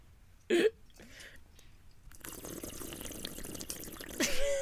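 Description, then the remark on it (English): Someone swigs a drink of water, with a sharp gulp near the start and another toward the end, separated by a stretch of wet, sloshing liquid noise. No talking. “Take a drink of salt water. Bong water. Okay. Just have yourself a little swiggles.”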